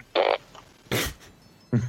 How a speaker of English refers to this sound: That's a fart.